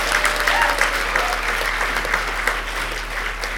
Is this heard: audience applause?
yes